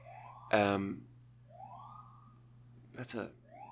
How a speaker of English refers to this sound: That's a very, like, unassertive siren out there. It's, like, really not... Okay, now it's doing it. But for a second there, it was yielding. It was nourishing. It was accepting, as far as sirens go.